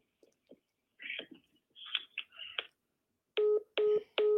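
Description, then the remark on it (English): A telephone disconnect tone after the other caller hangs up: three loud, evenly spaced electronic beeps on the line, preceded by soft clicks and handling noises, with no one speaking. “She hung up the phone.”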